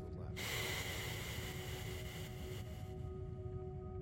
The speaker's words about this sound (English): Placing your thumb upon your right nostril and breathing out through the left.